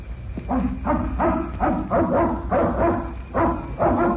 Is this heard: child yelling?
no